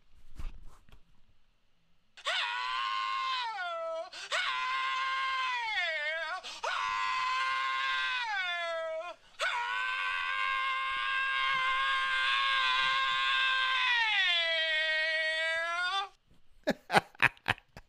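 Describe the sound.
A man's voice mimics a rock singer's low, rolling vocal purr, a loud, sustained croon in several swelling phrases with bending, wavering pitch, followed by a few sharp clicks at the end.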